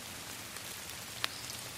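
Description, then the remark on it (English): Steady rain falls in a soft, continuous hiss of big drops beaten by the wind, with a single sharp drop or tap standing out briefly near the end. No voices. “The last day, it rains.”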